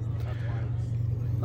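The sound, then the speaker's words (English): Steady, loud low-pitched engine drone from inside a busy moving coach bus heading to Sheffield, a constant rumble filling the cabin, with faint murmuring voices beneath it. “So we're on the monkey bus. We're heading down to Sheffield. The bus is busy, but a little bit subdued in atmosphere.”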